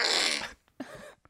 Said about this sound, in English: he is farting again.